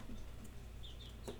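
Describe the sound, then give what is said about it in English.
Tiny Serama chickens chirping softly in the background, a few short high-pitched peeps clustered toward the end over a steady low hum, with no one talking. “I don't know if y'all can hear those tiny little birds behind me.”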